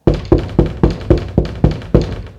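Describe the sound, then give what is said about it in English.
Heavy banging knocks on a front door, about eight loud thuds in a quick, steady rhythm with no voices. “The banging continues. You push the blankets aside and walk through the passageway to the front door. You open it enough to see who's knocking.”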